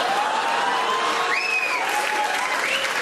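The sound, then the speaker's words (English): A crowd that includes French-Canadian women applauds with steady, dense clapping that holds at an even loudness for about three seconds, joined briefly by a few faint whistles rising over the noise. “That was a round of applause from the French-Canadian women that will do fucking everything.”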